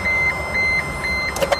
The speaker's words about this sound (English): Is this the indicator, isn't it? The indicator. It's really annoying, isn't it?